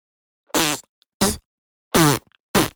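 Four short, loud, low brassy blasts from a tuba, each a quick buzzy fart-like honk, spaced unevenly with brief silences between them and no talking.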